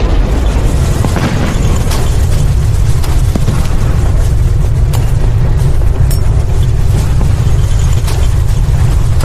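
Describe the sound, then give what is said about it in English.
A massive rocket bomb explosion roar, a deep, sustained rumble heavy in the low end, with crackling debris and sharp pops scattered through it. It stays loud and unbroken for the whole stretch, with no voices. “There was a roar that seemed to make the pavement heave.”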